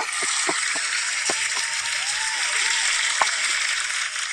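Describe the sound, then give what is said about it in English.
An applause sound effect: a steady wash of crowd applause, many hands clapping densely and evenly for a few seconds, with a few sharper individual claps standing out. No voices are heard. “Where's my applause?”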